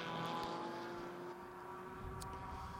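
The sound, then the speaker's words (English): Team TGM's two Aston Martin race cars head out onto the track in convoy, their engines a steady, loud droning hum with a sustained tonal whine that holds level throughout, with no voices heard. “But Team TGM going out there in convoy.”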